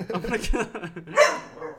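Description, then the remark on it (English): A dog barks, a few sharp yappy barks with one louder bark standing out, mixed in with people talking in the background. “I'm gonna kill my dog.”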